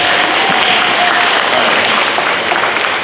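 An audience claps steadily for about three seconds, a dense, sustained wash of many hands applauding at once, loud and close, with no voices standing out.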